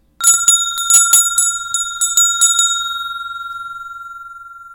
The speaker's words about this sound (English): Okay, first bell!